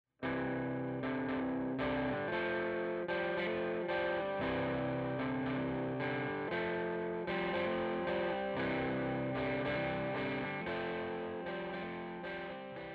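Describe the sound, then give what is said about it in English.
Steady strummed electric guitar with a light, gritty overdrive, playing a simple strumming pattern to fill out a song, chords ringing in a regular rhythm for the whole stretch, fairly loud with no voices. “And the other has a light overdrive distortion.”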